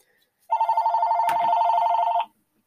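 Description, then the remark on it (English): A telephone bell rings in one continuous burst of nearly two seconds, a loud, rapidly trilling metallic jangle with no one talking, then cuts off into silence. “Grab the phone!”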